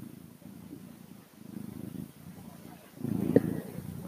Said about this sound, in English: Let's see if I can get one of them to purr just a little bit for you, to help you fall into a deeper sleep.